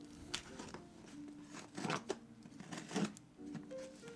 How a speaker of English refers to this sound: He's using the scissors, and he's cutting away from himself. That's very good.